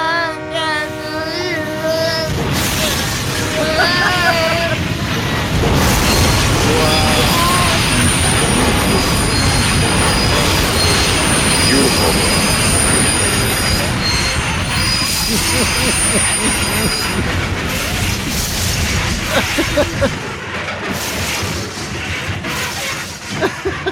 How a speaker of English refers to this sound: You know what I love about that is you hear the clicks before it's the subway.